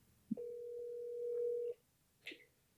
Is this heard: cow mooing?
no